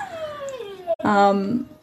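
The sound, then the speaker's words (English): A female dog named Lou whimpers to be let in, in two drawn-out whines: a long falling whine, a brief pause, then a louder, steadier, more strained whine. “I'm just going to let my dog in. Who is feeling like she's going to miss out on the meditation, getting slightly upset.”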